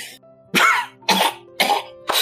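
A series of four harsh, close coughs spaced about half a second apart, each a sharp burst with a raspy tail, over a faint low hum and no talking.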